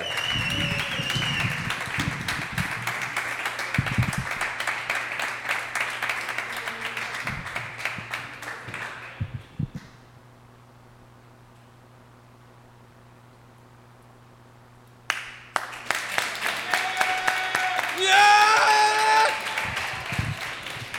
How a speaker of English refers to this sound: hey, let's start clapping right now for your headliner of the evening.